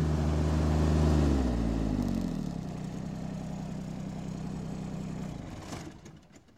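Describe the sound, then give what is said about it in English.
A lawn mower's small engine runs loudly during mowing at Stonelands, its pitch dropping as it slows from a higher rev to a steady lower drone before cutting off near the end. No one speaks. “Just been working on some mowing, as you probably could hear.”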